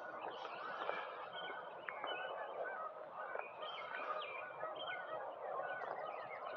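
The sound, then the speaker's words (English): A dense, continuous clamor of geese honking and squabbling together, harsh overlapping calls filling the whole stretch at a steady, agitated level with no talking. “Boy, these birds are really fighting.”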